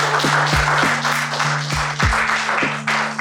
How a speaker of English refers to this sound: How about a nice round of applause for the lovely people?